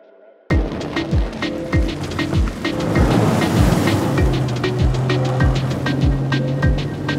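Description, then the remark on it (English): A Sea-Doo jet ski's engine drones as the hull slaps over ocean waves in the Florida Keys in a steady series of thumps, with rushing wind and spray filling the background. “We out here in the Keys, riding Sea-Doo.”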